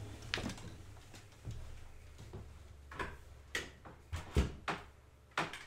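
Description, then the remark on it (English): A door being shut, heard as a series of sharp knocks and latch clicks spaced irregularly over a steady low hum, moderately loud, with no voices. “He's upset that we closed the door.”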